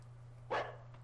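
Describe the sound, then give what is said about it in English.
A dog gives one short, sharp bark midway through, followed by a faint trailing yip, over a steady low electrical hum with no one talking. “The dog knows something's up, though.”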